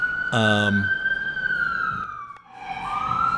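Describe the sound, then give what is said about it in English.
An emergency vehicle siren holds a loud, high, steady wail that slowly sinks and then climbs again, with a short, brassy horn-like blast near the start. “Would you have sirens like that going off in your area?”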